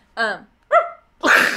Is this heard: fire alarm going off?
no